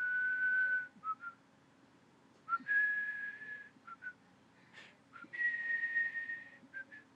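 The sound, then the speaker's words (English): A clear whistled melody plays in several sustained phrases with short breaks between them, each long note followed by brief chirpy accents, steady in loudness, with no talking. “So the whistling theme emerges again.”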